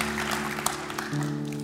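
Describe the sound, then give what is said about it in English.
An audience at a church worship service claps in a steady, dense wash of applause for Jesus, with a sustained organ-like chord humming underneath that shifts pitch partway through. “Give our King Jesus, crucified and forever risen, an applause one more time.”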